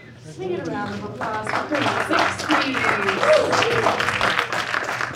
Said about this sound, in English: And that round of applause was also for yourselves for making it out here at 10 p.m. on a Thursday night. Thank you so, so much.